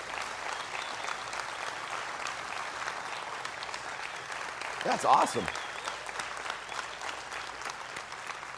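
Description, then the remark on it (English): An audience applauds steadily to honor people who work in schools, a dense, even crackle of many hands clapping that lasts the whole stretch. Midway, a voice briefly speaks up over the clapping. “The applause is pretty good.”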